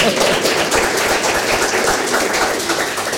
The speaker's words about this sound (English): The rest of you all passed as well. Big round of applause.